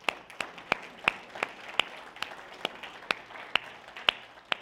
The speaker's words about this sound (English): Can we just one more time, a round of applause?